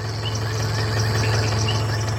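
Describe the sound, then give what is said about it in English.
A jungle ambience sound effect: a little frog's repeated high chirping calls over the steady, low droning hum of a boat engine, with a constant bed of natural ambience and no talking. “I didn't realise the sound effect has like a bit of a motor engine at the start of it.”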